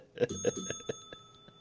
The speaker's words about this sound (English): Hey, ring the bell.